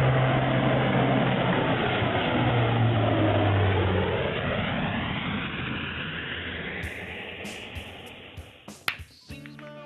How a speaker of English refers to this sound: And so, Lieutenant Monzo pushed all four throttles forward, and the transport with a total of 23 of America's finest on board began climbing through the storm.